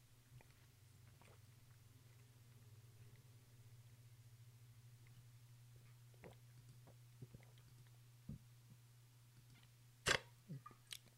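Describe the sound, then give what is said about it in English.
Quiet drinking sounds over a low steady hum: soft mouth clicks and swallows, then a sharper sip near the end followed by a couple of small gulps. No one speaks. “Just sipping on that moist.”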